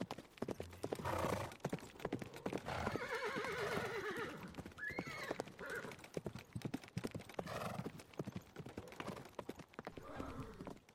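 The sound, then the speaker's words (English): Chariot horses, whipped into movement by their drivers, trot with a steady, dense clip-clop of hooves while one whinnies loudly partway through, a rising then falling neigh standing out over the rhythmic hoofbeats. “And then their chariot drivers whipped their horses into movement.”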